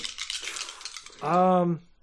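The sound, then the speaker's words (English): Dice from a player's karma pool are rolled, rattling and tumbling across a hard surface in a quick, clicky clatter lasting about a second, then a short sustained voiced sound follows as someone reacts. “I'm going to use both dice in my karma pool.”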